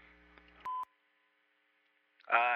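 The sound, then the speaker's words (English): A single short, loud answering machine beep sounds after a faint murmur, followed by a pause of near silence before a voice begins speaking. “leave a message. Your machine. After the beep.”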